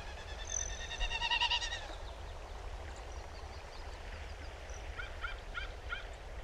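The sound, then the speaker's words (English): A couple of distant American crows, calling from the top of a pine tree, give a few harsh, rasping caws in two short bursts, first near the start and again toward the end, over a steady outdoor background hum. “You might have noticed a couple of American crows calling from the top of a distant pine tree.”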